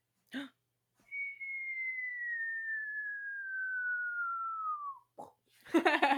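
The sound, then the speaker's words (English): A person imitates a whistling firecracker: a single steady, high whistle that slides slowly downward for about four seconds, then breaks off into a short, noisy burst. “I can do the firecrackers.”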